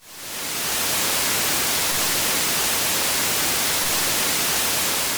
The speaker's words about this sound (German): Und auf der Snare werden wir jetzt einen anderen Trick anwenden, nämlich ein weißes Rauschen, was wir im Endeffekt auch permanent mitlaufen lassen.